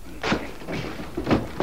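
A door being broken in: four heavy thuds land at uneven intervals as it is forced, each blow a dull, booming impact with a brief rattle, and no voices.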